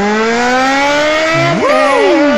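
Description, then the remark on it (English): A loud motorcycle engine revs steadily higher, and a second motorcycle engine swoops up and then drops away as if speeding past. No one speaks. “That's a loud motorcycle.”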